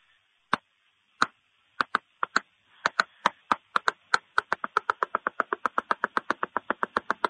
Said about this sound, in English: And so basically people know to come up and do the secret knock. I'm very confused right now. There's a secret knock. Oh, yeah. It's super easy to do, but you got to know it, though. It's this.